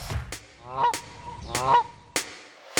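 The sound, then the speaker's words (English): Two harsh, nasal seagull calls ring out about a second apart, each a short rising squawk, with a few sharp knocking clicks in between and no voices. “let alone the fact there were nuclear seagulls flying around the place.”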